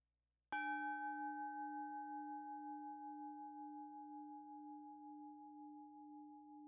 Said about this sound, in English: Now let's invite the bell and begin.